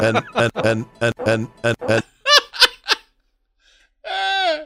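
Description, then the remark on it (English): A voice imitates farts in an improvised way: a quick run of short, buzzy blasts, then a few higher squeaky ones, a brief pause, and a final longer wavering raspberry, fairly loud. “Here's just the fart by itself.”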